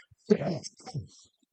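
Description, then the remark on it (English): A raspy cough from someone who has been sick for about a week and a half: a sharp, loud first burst followed by a weaker second hack, then silence. No words are spoken. “Sorry for the cough.”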